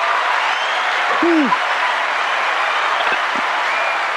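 Steady audience applause, a dense, even patter of many hands clapping that holds at the same level throughout, with a brief rising-and-falling whoop or whistle cutting through early on.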